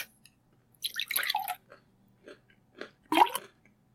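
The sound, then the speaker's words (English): Liquid pours into a glass in a few short splashy bursts, a longer gurgling stream followed by brief drips and one final splash, with no one talking. “I did like the ASMR of the pouring of the liquid.”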